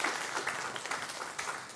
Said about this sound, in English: So give them a round of applause because they have done an amazing job today.